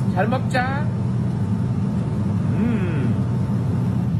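A steady, loud low roar of an airplane on a flight of a few hours to New York drones without a break, while a couple of brief, indistinct voices rise faintly over the engine noise.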